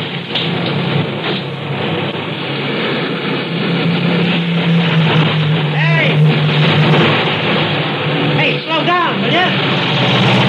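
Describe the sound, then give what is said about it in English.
Steady, dense roar of traffic on a four-lane highway with several cars whooshing past, their pitch sweeping as they pass, loud and continuous throughout. “I can't get across those 4 lanes of traffic.”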